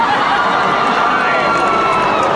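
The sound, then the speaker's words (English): A large concert audience reacts to a joke with a dense, uneasy murmur of groans and mutters that holds steady and fairly loud for a couple of seconds, with no single voice standing out. “Ooh, lost the crowd.”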